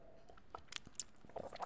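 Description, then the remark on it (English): Quiet sipping of brown liquor: a few soft slurps and small wet mouth clicks spread over a moment, with no one talking. “And when we started this show, we talked about politics while sipping on brown liquor, which we do often, which I'm going to do right now, take a little sip of some brown liquor in honor of the PBL podcast.”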